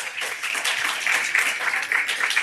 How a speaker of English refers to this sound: Our staff is, I'm biased, but they are amazing. You get to clap for them too, if you'd like.